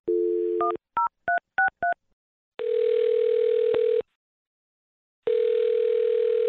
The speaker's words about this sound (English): All right, well, I'm going to dial his phone number and see if we can find out why, okay?